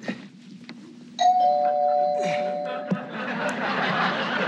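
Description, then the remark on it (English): A doorbell rings out with a clear, two-tone chime whose bright tones sustain for about two seconds before fading, over a low murmur of background noise. “That's him! Hurry! Everybody hide!”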